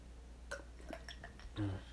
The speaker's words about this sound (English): Drinking cold ice water. I was actually in the mood for cold ice water. It was actually nice. To me, honestly, I just wanted something cold and with ice.